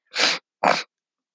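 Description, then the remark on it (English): Two quick, breathy sniffs through a congested nose, the first slightly longer than the second, separated by a short pause and followed by silence. No one speaks. “and if you hear me sniffle, that's because I have a stuffed nose.”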